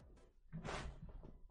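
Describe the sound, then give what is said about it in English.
A chair is pulled and scrapes briefly across the floor, followed by a few soft thumps and creaks as someone settles into it, fairly quiet, with no voices. “Let me just take my chair.”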